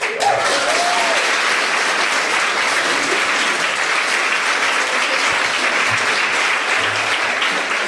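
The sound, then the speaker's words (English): A large crowd applauds steadily, a dense, sustained wash of clapping that stays loud and even from start to finish, with a faint voice briefly rising near the beginning. “I really like that our audience will applaud us if we don't shower.”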